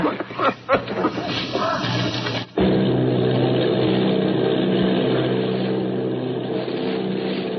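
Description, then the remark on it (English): The engines of Army bombing plane B-843, off Bayonne, New Jersey, drone steadily and loudly, a thick, continuous roar with a low humming pulse, briefly cutting out then resuming and holding for several seconds. “Army bombing plane B-843 off Bayonne, New Jersey.”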